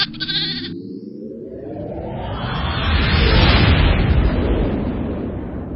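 A brief, wavering goat bleat opens the sound, then is swallowed by a loud, rushing rumble that builds steadily and stays dense to the end, like a blast or a roaring whoosh.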